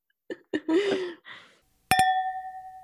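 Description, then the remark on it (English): Brief voices, then a sharp clink of glasses striking together in a Halloween toast, followed by a clear bell-like ring that slowly fades for about a second. “All right, yep, so let's give a Halloween toast, shall we?”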